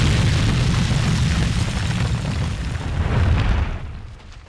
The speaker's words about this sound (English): Finally, on the 16th, the last shell was fired at Fort Lawson. The shell penetrated below down to the fort's ammo storage, and the fort exploded from within.